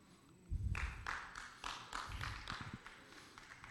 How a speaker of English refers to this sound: It's a good golf clap.